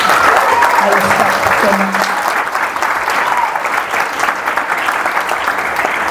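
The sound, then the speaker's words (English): A crowd claps steadily, a dense wash of hand claps holding loud and even for several seconds, with faint voices and a brief tone mixed in near the start. “So one more time, please clap it up for somebody.”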